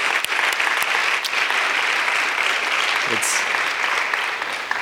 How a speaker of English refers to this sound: Also, it is Father's Day, and I think it'd be good if you're a father or a grandfather, you stand now, and let us just give a hand of applause to you. Thank you so much.